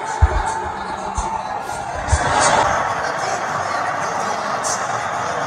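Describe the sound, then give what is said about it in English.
A large arena crowd cheers and roars as Donald Trump enters the building, in a dense, continuous wash of voices, swelling a little around the middle, with a few sharp low thumps early on. “Sounds like he's getting cheered.”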